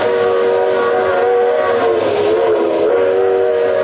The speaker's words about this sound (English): We're running at 60 miles an hour on open track in the dead of night. Now we thunder through a sleeping village.